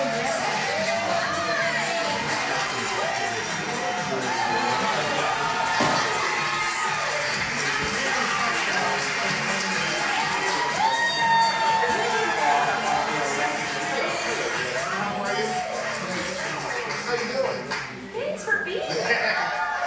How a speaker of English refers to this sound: Okay, here's a Where's Waldo moment? There are only two people in the audience that are not applauding. Find them.